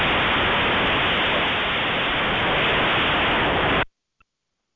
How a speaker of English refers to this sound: All right, I got some bad static on that one.